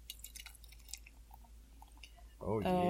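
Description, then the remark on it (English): A can of 5% alcohol golden beer is opened and poured into a cup: a soft, crackling fizz with scattered faint pops for a couple of seconds, then a man starts talking over the end. “Excuse me while I pop my top. Oh, his top. Nice. And the pour.”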